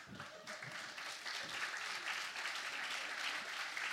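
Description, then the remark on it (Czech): An audience applauds steadily for the whole stretch, a dense, even patter of many hands clapping at once, fairly loud and without pause, with no voices standing out. “On se na mě počká dneska někde večer kvůli tomu vašemu potlesku, uvidíte.”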